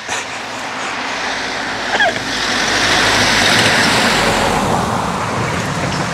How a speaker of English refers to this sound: There's another car coming. All these cars.